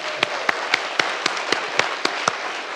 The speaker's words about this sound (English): Hey, round of applause, please.